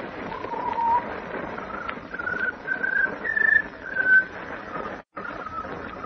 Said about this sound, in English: At the moment, Lois, Horace Pinder, and the Man of Steel are waiting silently for the strange Scarlet Bird to trill its peculiar melody. Just when we want to hear it, he won't sing. Patience, Miss Lane. There. He's starting.